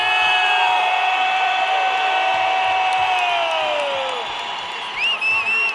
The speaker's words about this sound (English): You hear that Mexican crowd? You guys hear that crowd, how lively it is in here.